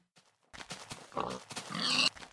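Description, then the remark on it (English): A pig toy oinks in a quick run of grunting, snorting squeals that rise into a shrill, drawn-out squeal at the end, with no one talking. “Like this pig is going to be replaced with Wolfie treats.”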